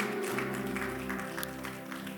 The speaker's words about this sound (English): Give the Lord a mighty clap offering, somebody.